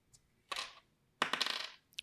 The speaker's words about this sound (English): can you give me a die roll on your black die?